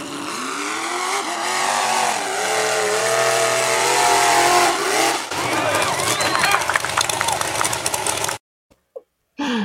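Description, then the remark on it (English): A truck engine revs loudly and steadily, its pitch rising and falling, then shifts into a rougher rumbling drive with clattering bursts before cutting off abruptly near the end. “roll the truck, baby. Roll that truck one more time.”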